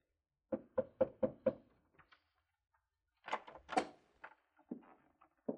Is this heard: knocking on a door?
yes